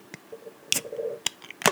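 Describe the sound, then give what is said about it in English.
A fancy bottle of single malt Scotch whisky being opened: a few sharp, crisp clicks spaced unevenly, with a soft squeaky rubbing sound between them, moderately loud with no talking. “So this is a pretty fancy bottle of, there we go. Ooh, that sounds good. Let me get it on my end too.”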